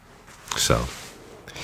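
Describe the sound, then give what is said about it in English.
A short, scratchy rasp of a flexible fountain pen nib dragging across paper while writing a thank-you note, one brief burst of friction followed by quieter faint scraping. “I'm going to write a thank you note or just a greeting note to you using this pen so you can see how beautiful it is.”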